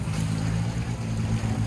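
A steady, loud motor drone with a strong low rumble from a jet ski running on the water in Chicago in summer, holding a constant pitch throughout with a faint wash of spray.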